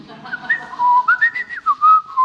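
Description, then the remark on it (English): A clear whistle picks out a wandering atonal tune, jumping between unrelated pitches in short sliding phrases with brief gaps, over faint low background noise. “So now, when I said before, imagine children in a play yard whistling something like that.”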